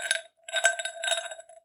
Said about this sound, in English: If you can get the ice cube into the glass.